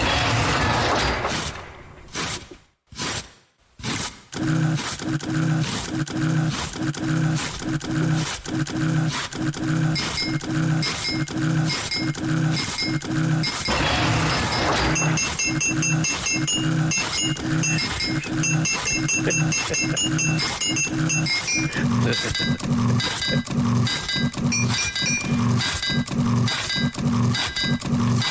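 A tune built from kitchen sounds, composed for the Absolute Radio playlist: a roaring blender, a carrot being grated and a big, high squeaky oven door, set over a steady, loud rhythmic beat of clinks and knocks played on teacups, with no talking.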